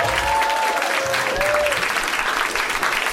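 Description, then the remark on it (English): An audience claps steadily in a dense, sustained wash of applause, with a few faint whistles or cheers rising briefly above the continuous patter of hands. “Let's give a really, really heartfelt round of applause”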